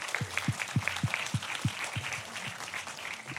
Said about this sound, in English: Give Katie a massive round of applause.